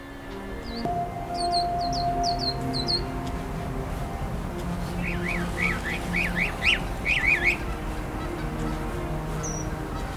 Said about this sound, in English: It's usually easy to pick out a mockingbird singing, as it tends to switch songs and calls in rapid succession, and at peak times will belt these vocalizations out very loudly.